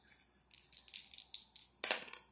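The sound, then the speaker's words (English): Dice are rolled for an astrology reading, rattling and clattering in a quick run of sharp, bright clicks, ending with a louder burst as they tumble to a stop on a three. No one speaks. “Let's roll the dice and see what element we're working with and what they're hiding, and we'll go from there.”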